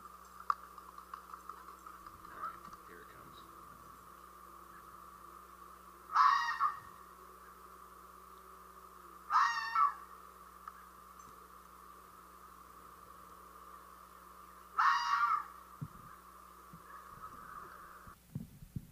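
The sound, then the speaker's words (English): A fox, playing with a dog, screams three times, each cry a loud, harsh, raspy shriek lasting about a second, separated by several seconds of quiet over a steady low hum. “All right, so here's going to be a fox screaming here.”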